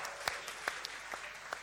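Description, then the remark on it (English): An audience at Big Church Weekend applauding the people attending for the first time: a steady wash of many hands clapping, with a few sharper individual claps standing out. It sounds fairly soft, with no voices. “Let's give these guys a round of applause.”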